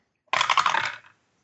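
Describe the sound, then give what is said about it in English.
Dice rattle and clatter across a hard surface for a luck roll in one quick burst of rapid tiny clicks, starting loud and tapering off within about a second, with no voices. “Go ahead and give me a luck roll.”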